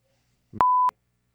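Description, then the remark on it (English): A single steady censor bleep, a pure mid-pitched tone lasting about a third of a second, abruptly cutting over a clipped fragment of voice, with sharp clicks at its start and end. “Beep this out, but what's her name?”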